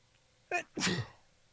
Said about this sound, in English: and I have to sneeze, and it's not...